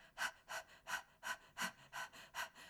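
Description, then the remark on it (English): A person imitates a Labrador's panting: eight steady, breathy in-and-out huffs at a relaxed, even rhythm, with no talking. “And then panting like a Labrador.”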